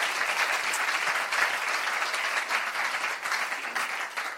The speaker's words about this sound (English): So we appreciate God. I would want us to give ourselves a round of applause for making it.